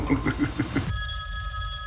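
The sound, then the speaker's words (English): A telephone rings in a scene from the film Jack Reacher: Never Go Back, opening with a quick burst of pulsing chirps and then settling into a steady, bright electronic trill that holds at a constant level until the end. “First, that phone over there is going to ring.”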